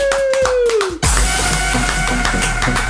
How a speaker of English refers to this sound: So why don't you all welcome with a fat round of applause from Riverside